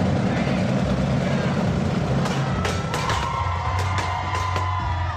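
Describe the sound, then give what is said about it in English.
A large crowd at the grand opening of an HEB store cheers and shouts continuously over loud music as the doors open and people rush in, with sharp whoops and claps standing out in the last couple of seconds, the whole din dense and steady throughout. “I hope you can hear me over all the music and the big party going on behind me.”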